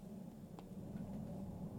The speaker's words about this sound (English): And there's an airplane. That's a military jet.